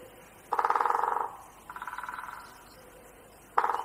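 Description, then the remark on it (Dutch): A great spotted woodpecker drums in three rapid, buzzy bursts of fast-repeating knocks, each under a second long. The second burst is softer, and the third is cut off at the end. “Het is de grote bonte specht.”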